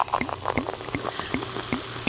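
Champagne pours into plastic wine glasses inside an RV for a celebratory toast: a steady gurgling stream with bright fizzing and small bubbly pops recurring throughout, no voices.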